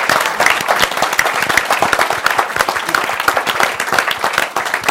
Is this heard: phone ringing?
no